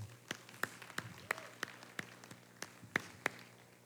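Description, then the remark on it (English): Sparse audience applause for graduates: roughly nine sharp, separate claps land at irregular intervals over a faint background hum. The clapping stays quiet and thin, and no one speaks. “Let's give our graduates another round of applause, okay?”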